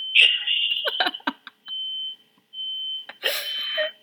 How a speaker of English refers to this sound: Is your fire alarm going on? Is that my fire alarm? That's kind of awkward.